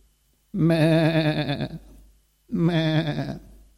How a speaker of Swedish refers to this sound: Vi har en släkting som har får utanför Lekeryd, och det är härligt att åka dit på våren och titta på de små lammungarna och fåren.